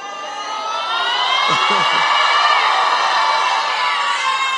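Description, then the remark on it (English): A church audience shouts and cheers together at their pastor during a sermon, a loud, sustained roar of many voices filling the space for several seconds, with a few individual whoops rising above it. “Why are you shouting at me?”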